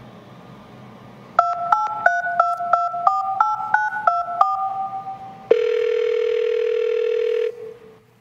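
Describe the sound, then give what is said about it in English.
A telephone being dialed to call Liberty Mutual about a car insurance claim: about ten quick two-tone keypad beeps in a steady rhythm, then a single loud, steady ringing tone that holds for about two seconds before cutting off. “Guess I should give Liberty Mutual a call.”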